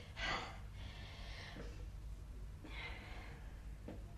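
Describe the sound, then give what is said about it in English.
Someone demonstrates Tai Chi deep breathing: slow, audible inhales and exhales, about two full cycles with a short pause between them and no talking, over a low steady background hum. “We learn Tai Chi. It's very good for breathing exercises.”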